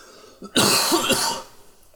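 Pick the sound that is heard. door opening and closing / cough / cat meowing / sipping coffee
cough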